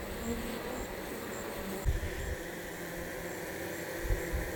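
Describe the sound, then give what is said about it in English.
A steady, dense hum of honeybees fanning air out of a hive to dry down the honey during a nectar flow, an airy buzzing drone that holds constant throughout, with a couple of soft low thumps and no voices. “So we hear a lot of air moving out of that hive. What's that about? They are fanning the dry some of the honey.”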